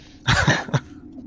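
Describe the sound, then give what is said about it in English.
A short cluster of fairly loud coughs: two rapid hacking bursts followed by a brief third one, with no talking around them. “Cough, cough.”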